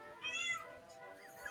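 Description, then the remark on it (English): A cat lets out a single drawn-out meow, moderately loud, with a slight rise and fall in pitch and no talking over it. “Meows.”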